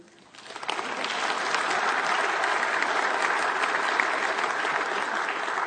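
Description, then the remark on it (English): A burst of applause rises quickly from quiet and holds steady as dense, crackling clapping from a crowd, sustained and fairly loud for several seconds with no voices. “Cue applause.”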